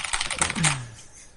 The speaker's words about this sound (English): You hear me typing. Yeah, we hear you typing. It's like, this guy's typing furiously, but like, I said the answer earlier.